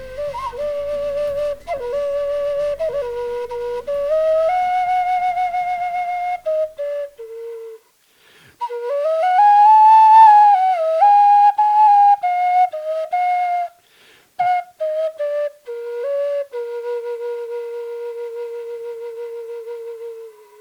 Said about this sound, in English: Yeah, that was a great welcome whistling.